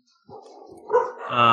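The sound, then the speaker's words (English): A dog barks in a short burst of yapping barks that grows louder toward the end, with a muffled murmur of activity underneath. “Shout out to my dogs.”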